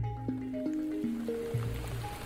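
Heavy rain pours down on Egmont Atoll in the Indian Ocean, heard from under a palm tree, in a steady, dense wash of hissing noise, with a few sustained tones drifting over it and no talking.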